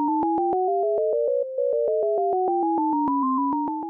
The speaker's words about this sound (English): Each ear is getting an alternation between high beeps and low beeps. But together you're hearing all of the high beeps as a unit on one side, probably on the right, and all the low beeps on the other side.